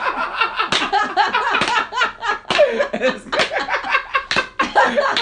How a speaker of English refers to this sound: So the things we're going to do is first we're going to do is just by clapping our hands. And we're going to clap our hands like this.